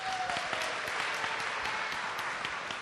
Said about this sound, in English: Give him a big hand clap.